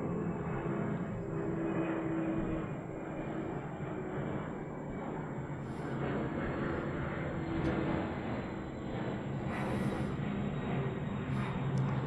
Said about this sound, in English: Louisville is one of the few places in the country, I think, where planes fly right over the downtown. I was actually really just enjoying taking that moment to listen to the sound of the plane, which I'm not going to edit out,